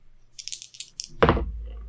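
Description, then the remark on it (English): Two six-sided dice rattle briefly in a cupped hand with a few quick clicks, then clatter down onto a hard surface in one sharp tumble that settles quickly, landing on a pair of threes. Clear, no talking. “But anyway, I think this is just going to be 2d6.”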